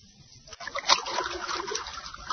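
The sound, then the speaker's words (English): Water pours into a room with a steady splashing rush that starts after a brief quiet moment, with a brighter splash early on and then a continuous churning flow, moderately loud. “It's water, Bucky. And unless you tell me what I want to know, more water, much more, will continue to pour into this room”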